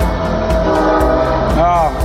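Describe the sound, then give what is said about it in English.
A passing commuter train sounds its horn in a sustained, loud blare over a steady rumble, the tone bending slightly near the end. “And here comes the train that he tried to make sure didn't continue to run. No, that's the commuter.”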